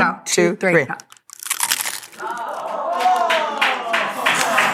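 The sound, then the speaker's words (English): Crinkly crunching and light tapping as a frozen fruit roll is tapped repeatedly for about 30 seconds to make it crunchy, with a voice speaking over the noise and a brief quiet pause early on. “Okay, it's got to get crunchy, though. You've got to give it a minute. Give it. Do a tap.”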